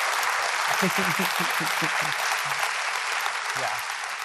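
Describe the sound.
An audience applauds a performer after the first play of an autumn season, a dense wash of clapping that holds for a few seconds and begins to fade toward the end, with faint voices murmuring underneath.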